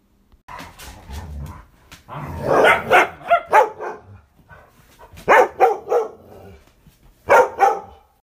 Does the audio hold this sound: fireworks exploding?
no